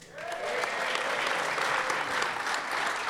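An audience claps in a dense, steady round of applause that swells quickly at the start and holds at an even, fairly loud level throughout, with no voices on top.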